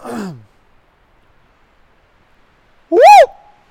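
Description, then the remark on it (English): A person mimics a monkey's whoop call: one loud, brief whoop that rises and falls in pitch, preceded by a soft, low vocal sound and a long silence. “But the whoop is heard over and over and over again.”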